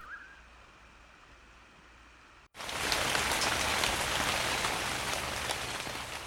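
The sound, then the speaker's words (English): Rain falling on rooftops: after a few seconds of quiet background, a dense, steady patter of rain cuts in abruptly and continues loud, with no voices. “I've been thinking about it falling on rooftops”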